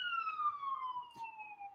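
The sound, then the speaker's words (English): A single siren tone slowly glides downward in pitch, steady and fairly loud, as an emergency vehicle passes by outside, with a faint dull thump partway through and no talking. “We got sirens going on.”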